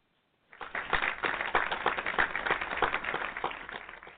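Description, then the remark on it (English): A crowd breaks into applause, many hands clapping at once in a dense, steady patter that starts suddenly and holds at an even, fairly loud level for several seconds without any talking. “Yes, that deserved another hand clap of praise”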